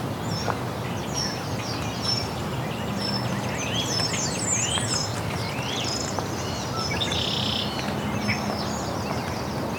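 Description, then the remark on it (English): European starling calls fill the scene: a busy jumble of whistles, slurred chirps and rasping notes, layered over steady outdoor background noise with no talking. “European starling.”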